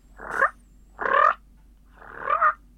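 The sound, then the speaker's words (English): Three loud, rolling turkey purrs blown on a four-reed mouth call, each a short fluttering burst about half a second long, spaced with brief pauses, with no talking. “If I wanted to purr loud.”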